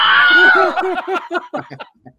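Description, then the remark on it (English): A voice lets out a short, loud, high-pitched imitation of the Wilhelm scream, which quickly breaks into a run of rhythmic, fading laughter bursts. “the Wilhelm scream when one of the worm guys falls off.”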